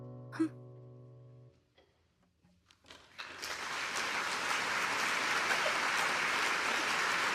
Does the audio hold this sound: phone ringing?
no